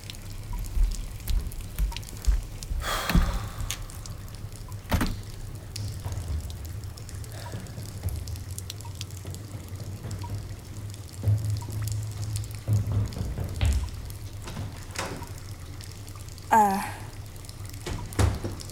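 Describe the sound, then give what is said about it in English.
Water left running in an apartment pours and drips in uneven splashes and trickles, with scattered sharp drops over a steady low background hum. “I wouldn't touch that Whit, water”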